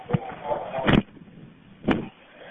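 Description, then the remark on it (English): A side door opens with a few muffled clunks and thuds spaced about a second apart, set against a low, murmuring background with a faint voice-like hum. “She heard the side door open.”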